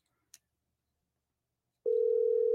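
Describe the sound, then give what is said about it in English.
A faint click, then after a pause a loud, steady electronic ringing tone of an outgoing phone call to a man starts and holds unbroken to the end, with no voices. “We're really striking out on phone calls.”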